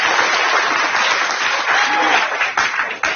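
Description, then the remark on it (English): A crowd applauds steadily, a dense wash of clapping that stays loud throughout before thinning slightly near the end, with a few voices mixed in. “Where did we get this crowd?”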